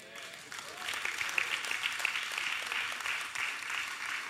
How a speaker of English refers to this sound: Clap your hands for his mouth.